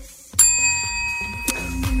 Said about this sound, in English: Is that a real bell? Yeah. It's sitting right next to me. Oh, I see it now. I see it now.